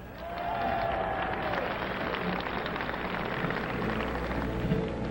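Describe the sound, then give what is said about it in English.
Steady audience applause as a performer is introduced, a dense wash of many hands clapping at an even, sustained level for several seconds with a faint murmur of crowd noise beneath. “Applause, he needs no further introduction.”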